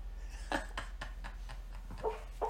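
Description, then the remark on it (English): A sleeping, dreaming dog lets out a few soft, muffled woofs and yips, short and irregular, faint against a quiet background with no talking. “oh, dog's barking. Oh, dog's barking in the sleep.”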